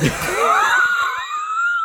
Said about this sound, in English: he cuts on her with the scalpel, and you hear this blood-curdling scream on this tape. And here's the thing. That scared the piss out of me, too. Because that audio is quite well done.